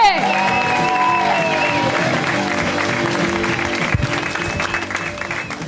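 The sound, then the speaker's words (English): A comedy show crowd applauds and cheers steadily for comedian Teresa Lee, the final comic of the evening, a dense wash of clapping with whoops and shouts mixed in, loud and sustained throughout before tapering slightly at the end. “Keep it going for Teresa Lee, everybody.”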